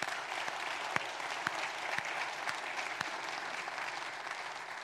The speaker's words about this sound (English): Okay, why don't we give a round of applause for what Christ is going to do in their life. There's four.